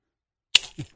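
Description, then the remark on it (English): After a moment of silence, a mousetrap snaps shut on a pen with a single loud, sharp crack, leaving a dent in the pen, followed by a soft thud and a brief second click. No one speaks. “Let's see the mousetrap. All set. All right. Let's hear one.”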